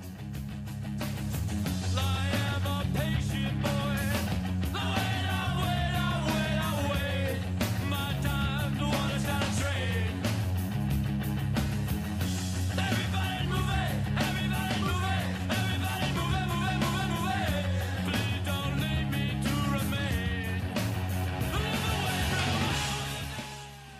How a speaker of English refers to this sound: Quintessential post-hardcore band, because it takes elements of hardcore music, which is loud, shouted, yelled vocals, pretty heavy guitars, but also sort of in a pop structure. Wiry, angular, non-melodic instrumental bits,